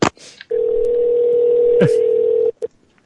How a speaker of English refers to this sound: I like the part of the show where the phones ring.